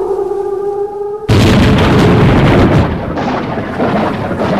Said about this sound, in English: Whoa, you better take cover, mate. That lightning is right wicked. That lightning struck him dead on those big bolts.